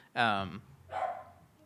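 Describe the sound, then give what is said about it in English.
A dog barks twice, first a loud harmonic bark, then a shorter, rougher one about half a second later, with quiet background noise between. “so we can all hear that my dog is now Brian”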